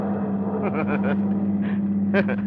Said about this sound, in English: You sit behind the wheel, tense, waiting, waiting. And then as you leave the downtown traffic behind you